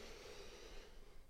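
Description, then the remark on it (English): A slow, steady deep breath drawn in, soft and airy, sustained for over a second with no talking, taken at the start of a guided relaxation check-in. “And we start by just taking a lovely deep breath in”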